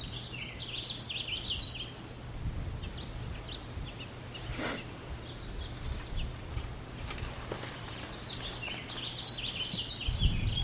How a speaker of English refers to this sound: It's helpful if the birds are singing. That helps with some of the fear.